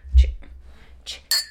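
Shot glasses clink together in a toast, a few quick taps with a short bright ring after the last, over a low background rumble.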